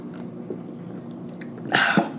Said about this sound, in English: Damn, that was a good first sip. Should have seen how loaded it was, y'all.